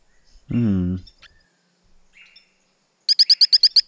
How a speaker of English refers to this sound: It's very squeaky, kind of melodic. It sounds a very small frog. It sounds like it's a small frog that lives in the trees and has a waxy skin. It's from Brazil, yeah? Yeah, endemic to Brazil.